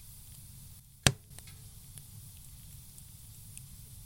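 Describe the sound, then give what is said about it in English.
A fire crackles with a steady low rumble and soft hiss, broken by one sharp, loud pop early on and a few faint snaps scattered afterward. “Fire.”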